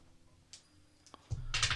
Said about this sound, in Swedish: Så jag räcker över tärningarna så får du slå dem.